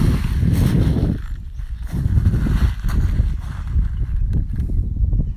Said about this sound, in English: It's just my feet on the stone.